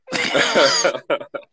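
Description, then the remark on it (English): A harsh, heavy coughing fit: one long raspy, choking burst followed by two short, sharp coughs, loud and alone without any talking. “I haven't coughed like that in a minute. It wasn't even regular cough. It was just like drowning.”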